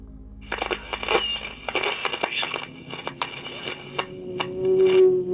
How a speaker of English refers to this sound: You hear the plane roaring down out of control and then crashing into silence.